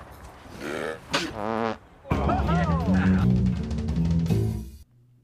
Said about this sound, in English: Oh, hold up. Hang on, I got a burp snort coming.